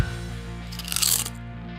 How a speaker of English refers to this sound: So do they have a distinctive crunch? I think they do. That's a good crunch. As far as, you know, talking a big game, I think these got it. It doesn't get any more distinct than that.